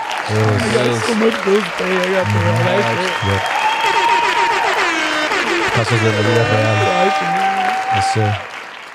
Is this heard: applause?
yes